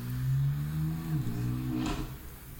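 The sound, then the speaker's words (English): A car goes by outside, its steady engine hum dropping in pitch as it passes, followed by a brief whoosh as it moves off; no one speaks. “I'm so sorry for that car that wanted to come in the middle of my life.”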